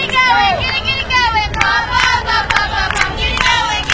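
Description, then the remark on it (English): The Lady Hornets team cheers from the dugout during a game, several young voices shouting and chanting together in a loud, steady stream with rhythmic bursts, continuous throughout. “And so you hear the cheering come to a brief pause.”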